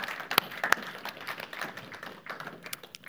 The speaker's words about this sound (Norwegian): En liten applaus for oss.